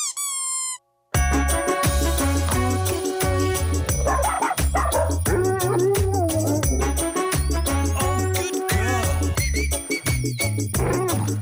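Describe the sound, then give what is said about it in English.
Yipping and barking dog sounds ring out over a steady, thumping electronic beat, starting after a brief rising whistle-like tone and a short pause, loud and continuous to the end. “Dog in listeners' homes and cars everywhere just went nuts.”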